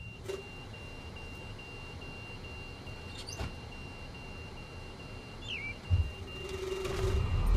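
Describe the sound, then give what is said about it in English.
A vehicle's door-open warning beeps steadily because the door is open, a thin high electronic tone over the low rumble of an idling engine, with a few brief clunks near the end. “Now that signal in the back, is that because the door is open?”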